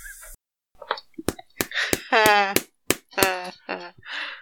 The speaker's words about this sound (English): Now I have to edit clapping out of my own podcast.